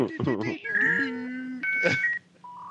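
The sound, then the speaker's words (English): Dial-up modem connecting tones: a quick burst of warbling chirps, then sustained electronic beeps and a screechy hiss, ending on a steady high tone, fairly loud. “Dial up.”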